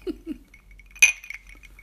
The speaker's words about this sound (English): Really forceful. So that was our glasses giving each other cheers. Yes. We're drinking out of these awesome Madonna Inn goblets.